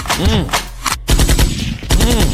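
A loud gunfire sound effect with rapid, repeated bursts in a machine-gun rhythm. The bursts break off briefly midway, then resume just as dense and sharp.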